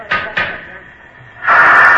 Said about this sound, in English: You see, it had 40 pounds of pressure in it, and that had to be blown out before the door could be opened.